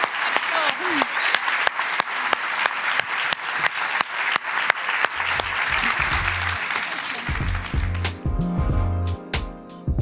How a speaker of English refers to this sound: Thank you all so much. Please give a big round of applause to our iconic marketers.